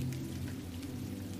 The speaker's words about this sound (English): The rain patters on your hood, and cool drops fall on your face.